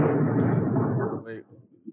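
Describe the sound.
A loud, dense rumble of thunder from a thunderstorm rolls for about a second and then fades, with a voice murmuring faintly as it dies away.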